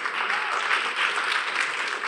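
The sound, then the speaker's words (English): Sustained applause from a church audience, a dense, steady wash of many hands clapping at once for about two seconds, fairly loud with no distinct individual claps and no voices standing out. “Yeah, give me a clap for that.”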